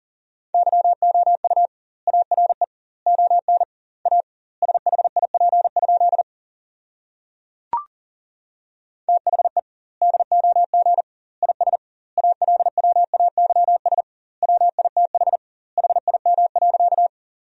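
Fast Morse code at 40 wpm sending sentences built from the top 400 words with double word spacing: a steady, mid-pitched tone keyed on and off in rapid dots and dashes, bunched into word groups with short gaps, plus one sharp click partway through.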